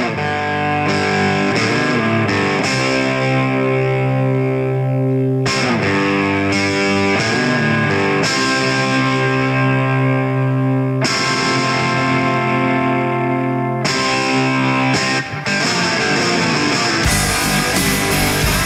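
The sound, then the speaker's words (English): A rock track played on radio station 630 CHED's Inside Sports show: loud rock music driven by heavily distorted electric guitar, with thick sustained chords that shift every few seconds and a dense, steady full-band sound throughout, no voices. “Haven't played that one in a while. That's a beauty, Kellen. Great track.”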